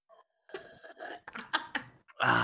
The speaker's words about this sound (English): That's a real slurp.